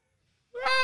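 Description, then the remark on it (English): After a moment of silence, a person loudly imitates a cat's meow once, in a bright, drawn-out voice. “Meow. Meow. We're just closer. How's that? Meow!”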